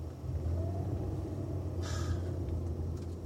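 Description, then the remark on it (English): A car driving in Hoboken in light rain: its engine rumbles low and steady, with road noise underneath and a brief higher hiss partway through. No one speaks. “That guy just tried to pull out in front of me as I was coming around the corner.”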